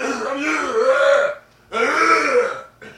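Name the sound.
throat clearing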